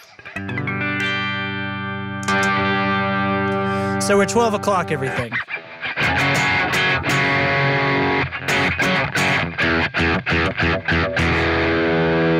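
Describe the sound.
An electric guitar through a germanium overdrive and distortion pedal, which has input, output, diodes and density knobs, rings out a long, gritty sustained chord, then shifts to choppy, rhythmic distorted strums. A man speaks briefly near the start.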